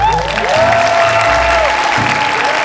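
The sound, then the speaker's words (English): A crowd claps and cheers loudly and steadily, voting on nominating EB3 to the ballot for president of the Supervillain Cartel, a dense wash of applause with whoops and shouts riding over it, sustained throughout without letting up. “All those opposed to nominating EB3 to the ballot, please give a round of applause.”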